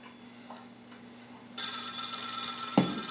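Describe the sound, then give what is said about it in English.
A landline telephone bell bursts into a loud, rattling ring about halfway through, sustained over a low steady hum, with a brief knock near the end. No one speaks. “I think back in the day he had to flip the phone upside down to turn the ringer off.”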